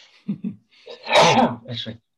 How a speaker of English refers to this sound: Excuse me, I'm going to sneeze, fellas.